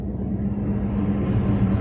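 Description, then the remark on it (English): A large train rumbles past, a deep, steady roar of low-pitched noise that holds at an even, fairly loud level throughout, with no voices over it. “That was a big train.”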